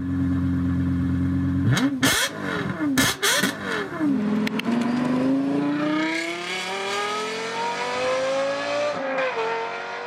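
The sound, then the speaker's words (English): A high-revving Lexus LFA sports car engine blips sharply a few times, then accelerates hard with a rising, screaming pitch through the gears, loud, with no voices. The car's engine and exhaust were designed by Lexus in partnership with Yamaha. “Well, I know that you love the sound of cars, and we actually have here a clip of one of your favorite cars accelerating. This is the Lexus LFA.”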